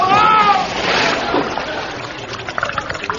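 A brief high cry gives way to a loud splash as a boy wading across a river plunges into deep water over his head, followed by churning, sloshing water that gradually settles.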